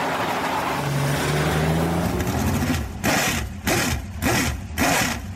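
A sprint car engine catches after a low rumbling push, then settles into a loud, choppy idle with heavy rhythmic pulses roughly every half second, close and raw.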